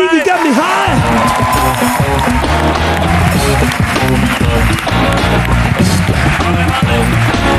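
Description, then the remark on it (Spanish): Loud, sustained audience applause with cheering and whooping voices on the show La Resistencia, called for by the host for Jorge Ponce: a dense wash of clapping that holds steady for the whole stretch after a brief vocal shout at the start. “Voy a ir sin más, que estamos hoy haciendo muchas chorradas y voy a intentar que esto vaya fluido, así que pido un aplauso.”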